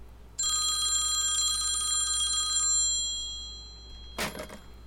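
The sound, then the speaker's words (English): A telephone rings unanswered after a call to her parents' number, in one sustained, bright metallic trill for about two seconds, then fades out, followed by a short sharp clatter as the receiver is hung up. No one speaks. “It rang more times than she had the patience to count, and she hung up in disappointment.”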